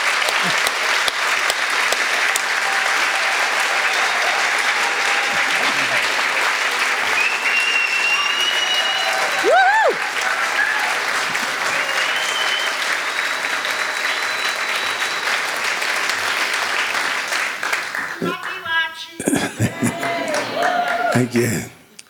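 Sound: audience applause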